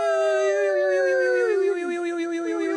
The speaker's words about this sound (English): Sorry, yawning.